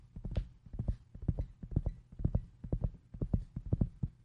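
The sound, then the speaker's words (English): Horse hooves clip-clop in a steady, brisk rhythm, sharp knocks following one another clear over a low hum, with no voices. “And, of course, as they arrived in the next town, they came there and they pulled up their horses.”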